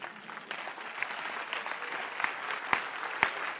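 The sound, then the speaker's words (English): An audience claps together in a dense, steady patter of many hands, fairly soft overall, with a few sharper, louder claps standing out toward the end. No one speaks. “See, you cannot even clap your hands.”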